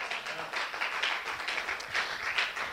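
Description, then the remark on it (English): A church audience applauds their pastor, a dense, steady wash of many hands clapping that holds at an even level for a few seconds, with no distinct voices rising above it. “I'm really glad y'all gave me that applause, because it's going to connect to what I'm going to say next.”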